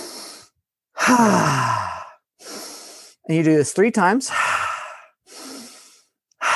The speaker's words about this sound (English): And you tap breathing in through the nose, out through the mouth. And you do it three times in a row.